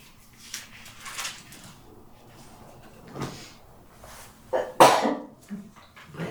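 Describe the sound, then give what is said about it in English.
One sharp, fairly loud sneeze bursts out after a brief intake, standing out against quiet surroundings with faint shuffling and a few soft thumps around it. “Bless you.”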